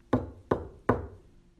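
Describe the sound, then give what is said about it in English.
Three solid knocks on wood during a paranormal investigation, after a spirit was asked to knock three times, evenly spaced about a third of a second apart, each a sharp thud with a short resonant decay, heard clearly with no voices. “If you're here with us, can you let us know by knocking 3 times? And suddenly we all heard it.”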